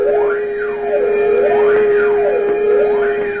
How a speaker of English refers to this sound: A penitentiary, its high, thick walls looming black in the darkness. Inside, a sudden flood of searchlights illuminates every corner. Gates clang shut, and a siren wails frighteningly into the night.